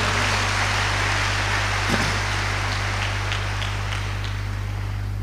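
Dense, steady applause from a crowd fills the whole stretch, a continuous hiss of many hands clapping at an even level, with a constant low electrical hum beneath it.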